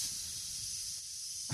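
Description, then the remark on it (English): A voice imitates the sizzle of fajitas with a steady, breathy hiss lasting about a second and a half, fairly loud, ending with a brief sharper burst. “The sizzle of the fajita.”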